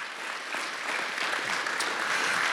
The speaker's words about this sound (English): Can you give yourselves a hand or give yourselves a round of applause?